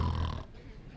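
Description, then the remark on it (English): A voice briefly imitates a single snore, a short, rough, throaty snort lasting under half a second before fading into quiet room tone. “Them rascals were snoring.”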